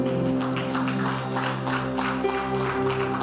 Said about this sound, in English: Rise up on your feet and give the Lord a clap offering. You are not clapping well.